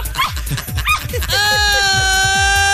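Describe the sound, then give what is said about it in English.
A rapid string of high, yelping cries from young puppies, fairly loud, breaks off partway into a steady, sustained tonal hum that carries to the end. “Hey, fellas, you just gotta check out these puppies.”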